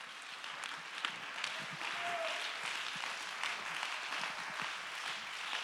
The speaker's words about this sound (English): Come on, let's clap our hands and give God the praise.